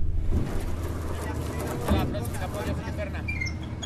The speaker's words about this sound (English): As the boat's heavy metal gangway touches down at one of Mount Athos's 20 monasteries, there's a rush of monks, pilgrims, and cargo.